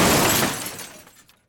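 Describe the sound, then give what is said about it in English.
A Malibu car jumps the curb and crashes into the side of a house at the end of a street: a loud, dense burst of breaking and shattering glass that starts hard and decays over about a second, with debris trickling to silence. “The Malibu jumped the curb, massacred a lawn, and crashed into the side of the house nearest to the end of the street.”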